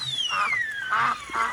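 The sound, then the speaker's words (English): Three nasal duck quacks sound in quick succession, fairly loud, while a high whistling tone slides steadily downward across the whole moment. No one talks. “It's 10 hours of ducks quacking.”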